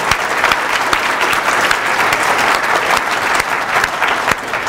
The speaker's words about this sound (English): Okay, round of applause for our 5 volunteers.